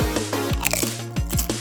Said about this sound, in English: I'm eating corn chips right now because my blood sugar is through the floor and I am shaking like a leaf.